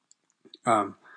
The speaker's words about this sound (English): I'm reading from a PDF, so there might be some clicking and scrolling. I apologize for that.